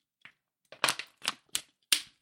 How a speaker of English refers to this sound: I dropped my water bottle.